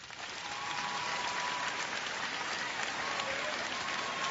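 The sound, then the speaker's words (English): A large crowd breaks into sustained applause, a dense wash of many hands clapping at once that stays steady and fairly loud for several seconds with no talking, clapping when asked to clap if they think they'd go to heaven. “Clap if you think you'd go to heaven.”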